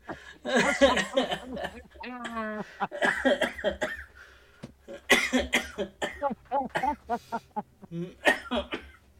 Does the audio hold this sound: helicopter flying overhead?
no